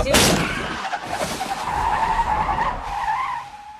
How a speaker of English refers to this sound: They're having a conversation and laughing, and then all of a sudden a deer hits the front of the car.